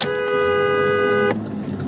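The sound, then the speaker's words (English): Street traffic rumbles steadily while a car horn blares loudly for over a second, then cuts off, leaving the hum of passing vehicles, heard while driving in traffic. “Just everybody's, this traffic is just, it's just ridiculous.”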